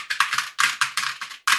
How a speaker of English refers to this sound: I got to furiously type a top eight from a recently announced tournament